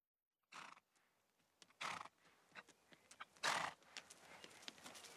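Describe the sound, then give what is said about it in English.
The steeplechaser Moscow Flyer ambles over, with soft, irregular hoof steps and three loud breathy snorts or blows spaced a second or two apart. No one speaks. “Moscow Flyer has rambled over to say hello.”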